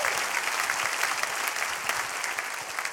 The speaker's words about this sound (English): Y'all clap your hands for Colleen.